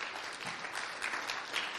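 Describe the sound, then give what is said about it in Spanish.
An audience applauds the Lord at the end of a sermon, many hands clapping at once in a dense, continuous crackle that holds an even loudness for a couple of seconds, with no voices on top. “Le damos un fuerte aplauso a nuestro Señor.”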